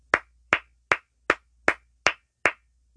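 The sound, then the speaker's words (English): Seven sharp hand claps in a steady, even rhythm, fairly loud, each one a crisp slap with a short decay and quiet in between. No one speaks. “Can't get some hand claps on that.”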